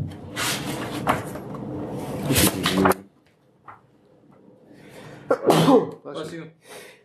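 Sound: sneeze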